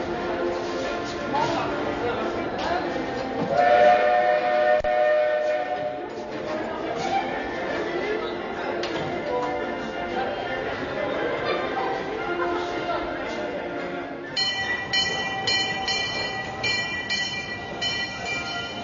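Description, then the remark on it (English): A steam train rumbles and hisses at the Disneyland Railroad Main Street Station at Disneyland, with steady mechanical chugging and sustained tonal notes over a background of chattering crowd voices, continuous throughout. “After passing through the turnstiles, you enter a small courtyard before passing under the Disneyland Railroad Main Street Station to enter Town Square.”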